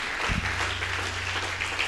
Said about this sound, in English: Hand clap, please.